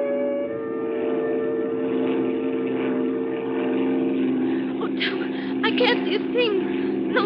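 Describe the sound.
A small propeller plane's engine drones steadily and loudly in flight through rough weather, a constant buzzing hum that never lets up, with voices briefly speaking over it near the end.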